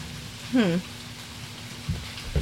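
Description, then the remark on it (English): Light rain patters softly and steadily in the background, a faint, even hiss, broken briefly by a short voiced sound and a couple of low thumps. “Like, we have to listen to the small rain in the background.”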